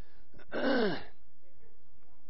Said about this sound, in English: now I've got a little tickle, so. Does anybody have a mint? A cough drop or anything like that? Anybody have any chewing? No. Okay. Anyway, then you just have to put up with me coughing.